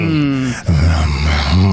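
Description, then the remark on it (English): A voice makes a low, throaty growl while kissing, held steadily for about half a second, then breaks briefly and resumes as a longer rumbling growl with slight wavering in pitch. No words are spoken. “It's kiss your partner and growl while your lips are together to create a unique vibration sensation.”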